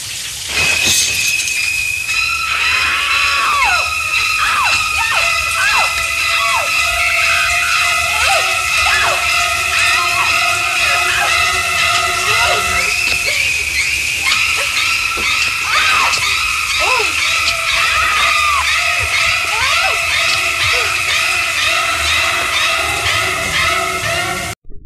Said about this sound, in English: What did you think about that one? That was a pretty good scream. It's pretty good. Pretty classic, right? Yeah. I mean, we've all heard the scream. We love the noise.